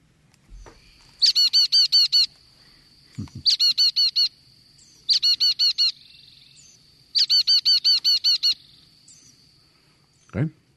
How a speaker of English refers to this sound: that would be your chickadee, your Carolina chickadee.